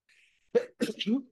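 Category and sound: human body sound, sneeze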